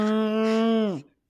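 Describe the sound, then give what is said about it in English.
A person imitates a cow's moo with one loud, sustained, nasal voiced note lasting about a second, which slides downward in pitch and trails off into silence. “predicted at the first time … would moo on this podcast”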